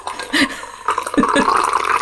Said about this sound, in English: I'm going to pour my tea, because I made a tea before I arrived. I thought I'd drink one earlier.